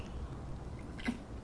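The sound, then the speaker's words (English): A single quiet sip of coffee, a short wet slurp with a faint swallow, over soft low background noise and no talking. “Sip of coffee for the working man.”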